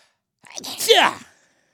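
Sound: sneeze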